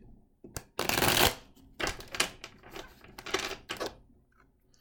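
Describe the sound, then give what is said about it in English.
Shuffling of a deck of cards for a card reading: a long riffle burst followed by several shorter, crisp flurries of card slaps and ruffles, with no one speaking. “Shuffling the cards.”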